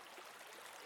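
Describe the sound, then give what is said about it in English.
Soft, steady rush of river water swirling and lapping around a small rowing boat being propelled by oars, a continuous hiss-like flow with no voices, brief and fairly quiet. “There's still movement here with the water, but you are relying even more on your oars to propel you forward.”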